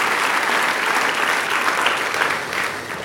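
An audience breaks into sustained applause, giving the Lord a hand clap, many hands clapping together in a dense, steady wash of sound that stays loud throughout with no talking over it.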